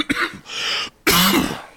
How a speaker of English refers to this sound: Oh, okay. One second, I gotta cough.